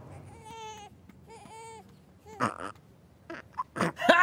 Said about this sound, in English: Ha! Burping like a boss? Yeah, way to go, fake dad.